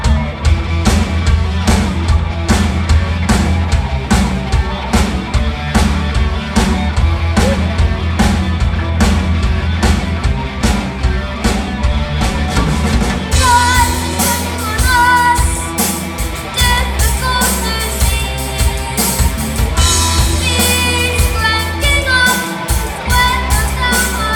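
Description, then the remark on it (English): A full band plays its very first written song loudly and continuously, with steady pounding drums and dense guitar chords; the arrangement thickens and brightens about halfway through. “Our song we're going to play is called ….”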